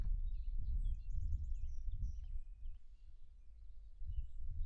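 Faint wild birds chirp and trill outdoors, recorded live in the floodplain of the St. Michael's College natural area in Vermont, scattered calls over a steady low rumble of wind or planes flying over, with no one talking.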